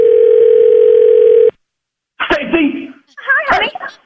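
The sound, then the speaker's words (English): A loud, steady telephone dial tone hums for about a second and a half as a call is placed, cuts off abruptly, and after a short pause a voice begins talking. “We're going to call him back.”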